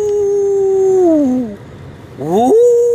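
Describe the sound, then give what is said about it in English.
A hound dog howls after chasing and treeing a raccoon, one long drawn-out wail that sags in pitch and fades, then a second howl swells back up, loud and mournful. “He hooped and howled for about an hour and a half.”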